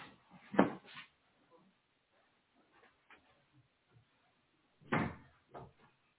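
A door is handled and shut with two clattering knocks a few seconds apart, each a sharp bump followed by a smaller rattle, with faint shuffling between them.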